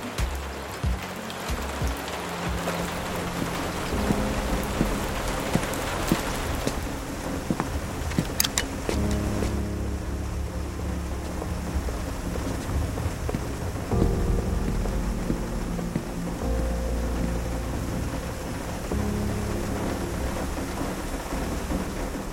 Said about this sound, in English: January rain. Cold, wet, generally rain-like.